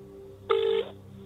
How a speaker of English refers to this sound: I wanted to include the viewpoint of the company at the centre of this story, so I contacted them. Just punch it in on my phone here.